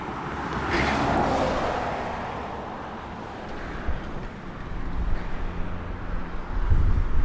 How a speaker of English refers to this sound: So how many cars do you think have gone past so far then? Well into the hundreds.